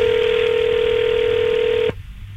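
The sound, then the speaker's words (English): Ringback on an outgoing phone call to a listener during a live radio contest: a single steady electronic tone, fairly loud, holds for about two seconds before cutting off into faint line hiss. “We said you got to answer your phone to win.”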